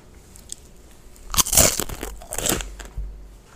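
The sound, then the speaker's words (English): Crisp crunching of a snack being bitten and chewed, with two loud bursts followed by a smaller crackle, heard on its own without talking. “Is that a good crunch?”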